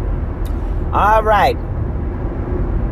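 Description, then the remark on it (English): A large Commuter Express bus rumbles close by on a street, its deep engine drone steady throughout, with a short burst of someone's voice briefly rising over it midway. “Here's this big bus. Next to me it says Commuter Express.”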